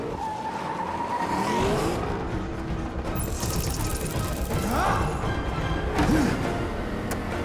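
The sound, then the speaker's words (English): A car, driven by a remote driving system, speeds along with a loud, steady engine roar, its tires squealing and skidding in several sharp, wavering bursts as it swerves. No one speaks. “Remote driving system activated.”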